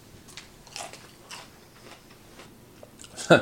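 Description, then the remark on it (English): Crunching of Totino's Takis Fuego Mini Snack Bites, hot and crispy, during a taste test: a series of sharp, irregular bites and chews that end in one loud, crackling crunch; no talking. “So yeah, it's got a really nice crunch. I like that. I mean, you can probably hear it.”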